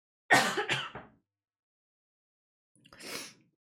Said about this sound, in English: Hold on, I gotta cough.